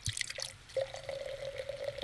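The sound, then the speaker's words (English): Sparkling pet nat wine is poured steadily into a glass, a bubbly splash settling into a continuous ringing pour that lasts about two seconds, with no voices. “Oh, that sounded like a beautiful pour. Sounded like a really nice pet nat.”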